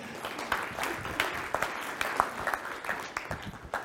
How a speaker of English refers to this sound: Thank you very much. Would you give him applause?